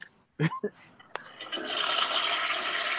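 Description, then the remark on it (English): A toilet flushes: a couple of sharp clunks from the handle, then a rising, steady hiss and rush of water that swells and keeps pouring loudly to the end. “Yeah, you know, I always like that because you got nice, you know, showers and, you know, I can, you know, have a nice clean shitter to be on.”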